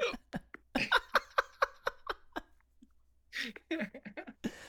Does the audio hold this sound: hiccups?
yes